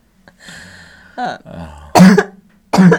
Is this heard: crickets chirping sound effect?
no